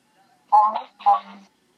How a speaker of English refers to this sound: It's your phone on the loudspeaker. Yeah, okay, I'll remove it.